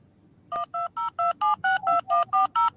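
A rapid run of about eleven touch-tone (DTMF) telephone dialing beeps played through a small Stemma external speaker, each a short two-pitch electronic tone, evenly spaced and clear over a faint background hiss.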